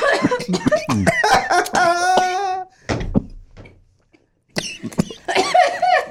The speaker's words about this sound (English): Yeah, hold on. I got to hit this again. That was a pussy hit. It's been a minute. Excuse me. No, I mean, coughing's a part of it, right? If you ain't choking, you ain't smoking, isn't that the same?